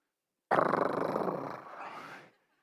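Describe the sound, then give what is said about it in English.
A person growls like a lion: one loud, rough, rumbling snarl lasting nearly two seconds, slowly fading, with no talking around it. “So you think about yourself as a lion, and somebody tried to reach their hand over in there and take some of your food.”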